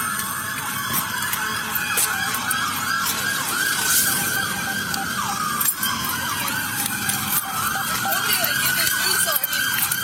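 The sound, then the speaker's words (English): Several emergency vehicle sirens wail and yelp at once, overlapping and steady, loud over a busy rumble of street noise for the whole stretch, responding to a person attacked by a tiger. “You hear all the lights and sirens?”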